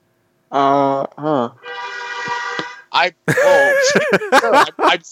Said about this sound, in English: I'm speaking. Please. Put the vuvuzela away.